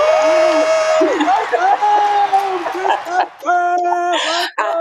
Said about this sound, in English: I love that you give the illusion of there being more people cheering me on.